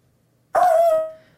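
A dog barking at the mailman lets out one loud, sudden bark that stretches into a brief high-pitched yelping tone before fading, with no one talking.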